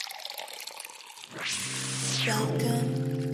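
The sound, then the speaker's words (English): A beer is opened and poured into a glass in Los Angeles: a brief hiss, then a steady glugging fill whose pitch rises as the glass fills, following a few spoken words. “I cracked open a beer, a little brewski for my bro time and my man cave.”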